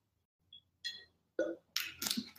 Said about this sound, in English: Okay, guys, I'm gonna take a sip of my kombucha and then we're gonna get into tip number three.